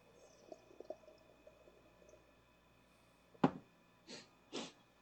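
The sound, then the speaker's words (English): Someone sips Kokta, a Bosnian cola: a sharp wet click followed by two short, breathy slurping bursts against a faint, quiet background, with no talking. “That was a nice sip sound, sir.”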